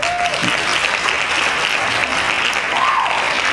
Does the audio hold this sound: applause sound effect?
yes